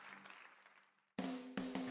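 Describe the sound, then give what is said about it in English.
A church audience at Jubilee Tri-Valley Church gives the Lord a hand clap, with dense, steady hand clapping that fades away, then after a brief silence a louder burst of clapping starts abruptly with a low hum beneath it. “Yeah, let's give the Lord a big hand clap this morning.”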